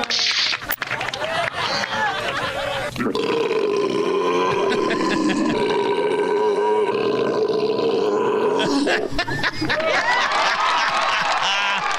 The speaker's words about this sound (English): Yeah, that wasn't very good. The woman's burp. That is disappointing.